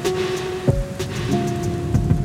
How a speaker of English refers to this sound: But New York storms kick down your door, hit you with a fire hose, and then are gone in minutes. California rain nurtures. New York rain roughs up.